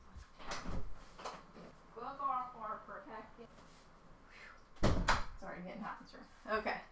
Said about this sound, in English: Hold on. My neighbor's knocking at my door.